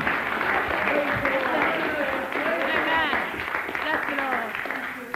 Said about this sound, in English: Give her a hearty clap, will you?